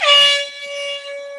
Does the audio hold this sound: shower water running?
no